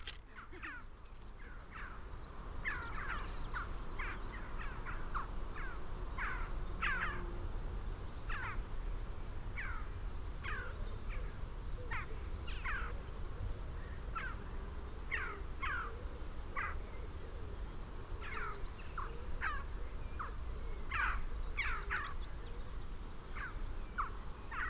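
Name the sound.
birds calling outdoors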